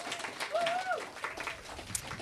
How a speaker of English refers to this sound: So we can give them all a round of applause for supplying their amazing artwork.